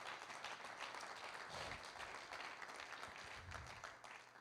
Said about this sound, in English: Give God a good praise today. Come on, clap in this place.